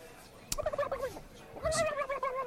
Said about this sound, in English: And they have turkeys, wild turkeys. They do have turkeys.